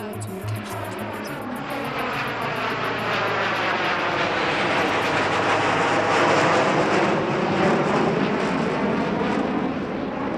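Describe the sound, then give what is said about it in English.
An airplane flies past overhead, its loud, steady engine roar swelling toward the middle and sliding in pitch as it goes by, filling the whole stretch without a break. “Yeah, I just thought I'd let that plane go past.”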